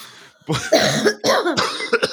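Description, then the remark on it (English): Two people cough in close succession from laughing so much, several harsh, overlapping bursts, with a brief throat-clearing rasp between them and no speech. “We're both coughing. Because we're laughing so much.”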